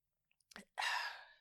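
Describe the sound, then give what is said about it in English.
A couple of faint mouth clicks, then a short wet gulp of wine being swallowed, followed by a breathy exhale. “That was just another gulp of wine.”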